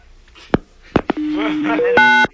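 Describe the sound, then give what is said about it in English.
A few sharp clicks, then a telephone's electronic tones: a steady low hum, a brief higher note, and a loud two-tone dialing beep before it cuts off. “Okay, we're gonna try this number again.”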